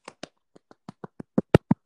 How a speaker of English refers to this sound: I'm clapping for you.